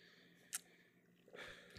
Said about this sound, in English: Okay. Let me just take one last sip of my tea.